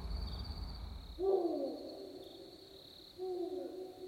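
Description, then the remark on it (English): Two clear owl hoots, each a drawn-out wavering call, spaced about two seconds apart at moderate volume over a steady faint high-pitched hum, with no voices. “She's an owl or something. Wait, she's an owl.”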